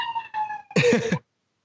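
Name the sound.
police siren passing outside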